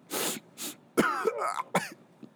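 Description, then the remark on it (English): Two short, breathy coughs, then a rougher, voiced throat clearing in a few harsh bursts. Fairly loud, with no talking around it. “so don't worry about the cough.”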